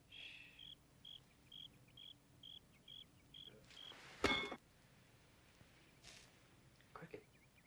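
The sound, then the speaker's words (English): A caught cricket chirps in a steady series of short, high pulses, clearly audible against a quiet background, followed by a sharp click and a few faint rustling sounds. “He catches her a cricket.”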